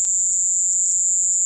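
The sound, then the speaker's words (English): A steady, piercing high-pitched cricket chirring that holds at the same level throughout, continuous and fairly loud, with no talking. “Scientists say the sounds were crickets.”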